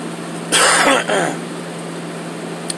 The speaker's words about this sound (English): I'm sorry, I was just clearing my throat. No, I don't have the... I'm not sick.